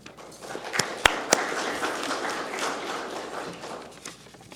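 An audience gives the head table a steady, dense round of applause lasting several seconds as someone comes to the podium to introduce the speaker, with a few sharper, louder claps standing out near the start and no one speaking.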